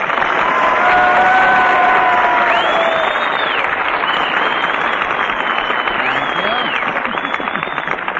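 A studio audience applauds and cheers loudly and steadily as Fred Allen is introduced on his show, a dense wash of clapping with rising whistles and shouts cutting through, sustained at full strength throughout.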